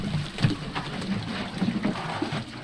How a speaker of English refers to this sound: The women dip large plastic cans into a basin filled with water from a nearby well.